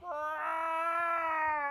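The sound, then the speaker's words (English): A person imitates the weird meow that Winky, an old cat, makes in the middle of the night around 3 in the morning: one long, drawn-out, steady nasal wail held for nearly two seconds at a fairly even pitch, with no other talking. “This weird meow thing where he'll just. In the middle of the night.”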